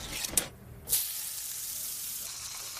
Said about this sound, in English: Spam. Don't knock it till you've fried it. Sizzle, pork,